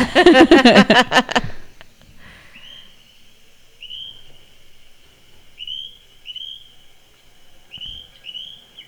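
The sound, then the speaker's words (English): After a brief loud burst at the start, birds chirp with repeated high whistled notes, coming in short runs every second or so, fairly clear against a quiet background. “The birds are all. Look at all of them.”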